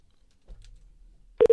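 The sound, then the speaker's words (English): After a quiet stretch with faint low rumble, a loud telephone ringing tone abruptly begins at the very end as a phone number is called, cutting in as short steady tonal bursts. “Should we hear ringing?”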